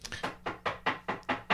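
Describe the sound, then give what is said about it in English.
Rapid, insistent knocking on a door, about seven firm raps in a steady, fast rhythm, fairly loud, with no voices. “Don't break the door.”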